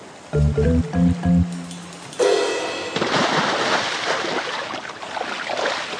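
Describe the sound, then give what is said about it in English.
A few short tonal blips, then a sudden loud splash as a man dives into the water, followed by several seconds of churning, sloshing water. “Then there was a huge splash, and Dad dived in.”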